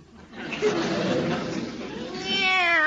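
A drawn-out, wavering cat meow, loud, that starts low and muffled and rises into a clear, tonal wail toward the end.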